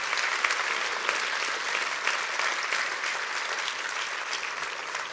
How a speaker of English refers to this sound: Hallelujah. Come on now, clap your hands real big.